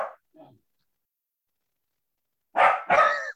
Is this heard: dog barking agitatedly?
yes